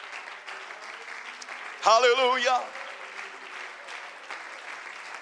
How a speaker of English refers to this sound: If you believe that, can somebody stand to your feet? Can you clap your hands? And can somebody give God praise here tonight?